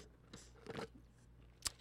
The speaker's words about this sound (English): Just took a sip of my Chick-fil-A Coke. Listen to that ice. Delicious ice cold Coke.